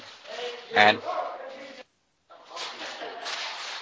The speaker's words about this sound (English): You are sort of sitting in a very busy area, aren't you? Yeah, it suddenly become very busy. I don't know. That's fine. People started shouting and throwing stuff around.